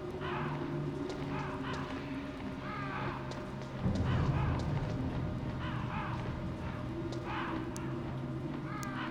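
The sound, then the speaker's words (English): Crows caw repeatedly, a scattering of harsh, rasping calls over a steady low hum and rumbling background, with no one speaking. “Crows down here.”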